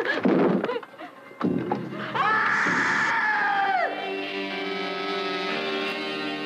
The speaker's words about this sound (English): The screams you hear may be your own.